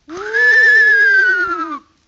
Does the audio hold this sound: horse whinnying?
yes